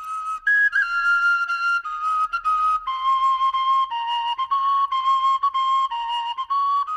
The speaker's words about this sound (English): That's a tin whistle, obviously. Oh, brings out the Irish in me, I guess.